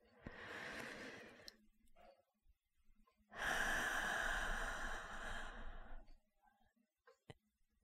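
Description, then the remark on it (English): Deep breathing into the stomach by a person in a comfortable seated position: a steady breath in lasts about a second and a half, then after a short pause comes a longer, louder, airy breath out. No one speaks. “So just bringing your awareness to breathing deeply into your stomach.”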